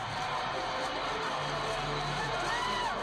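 A baseball stadium crowd cheers after a home run in a postseason game, a steady, dense roar that holds for three seconds, with a few shrill whistles rising above the noise near the end.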